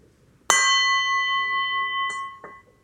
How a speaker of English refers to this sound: So let's do for some more minute. I'll hit the gong again.